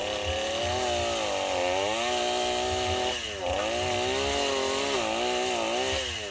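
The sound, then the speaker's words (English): An MS-21 chainsaw with a sloppy, dull chain runs continuously at high revs, its engine pitch dipping and rising as it bogs into wood and recovers while being moved back and forth in a cross-cut; loud, with no talking. “Move that saw back and forth. It cuts better when you're, you know, doing the cross-cut chainsaw.”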